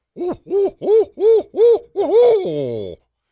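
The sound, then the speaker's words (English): A man's voice imitates an owl, giving five short rhythmic hoots, then ending on a longer wavering, warbling hoot that trails off. “Hey, …, do the owl again. Here's why. Because this is the best fake animal sound ever.”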